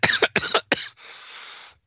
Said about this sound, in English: I don't know what just happened there. He started coughing. That's what.